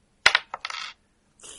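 A six-sided die (d6) clatters onto a hard surface with a sharp first hit, then a quick series of bright rattling bounces, and a softer roll near the end. No voices are heard.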